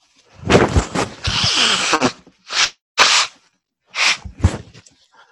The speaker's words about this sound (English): I had to blow my nose there.